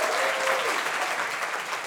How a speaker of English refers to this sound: And let's give a round of applause for Manuel and the rest of our storytellers.